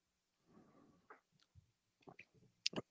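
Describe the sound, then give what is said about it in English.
Quiet mouth sounds of someone chewing food, with soft wet clicks and smacks, a faint gulp-like swallow, and a couple of sharper clicks near the end. No one speaks. “That's swallowed.”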